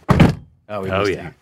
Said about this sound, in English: Can you do your door at the same time? Yeah. We're going to do in unison. This is what a door is supposed to sound like. Ready? One, two, three.